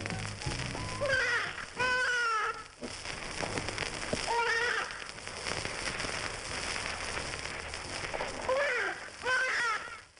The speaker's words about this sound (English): But first, listen to these actual squeals of a half-grown cottontail rabbit.